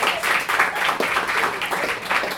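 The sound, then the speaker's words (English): A crowd applauds an author introduced for the final story of the evening, with steady, dense clapping that holds at a fairly even loudness throughout, many hands blending into a continuous patter with no voices over it. “Round of applause”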